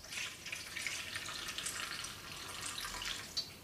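A steady stream of water pours into a pan, bringing it up to around 250 ml so the flour binds into a dough, splashing and hissing continuously for a few seconds, with no voices.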